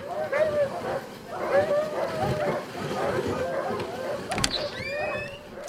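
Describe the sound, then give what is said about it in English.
Several dogs pulling an approaching dog sled bark and yip excitedly over a steady mechanical creaking and rattling, with a sharp clatter near the end. “With my sharp elf ears, I happen to hear that another dog sled's drawing near.”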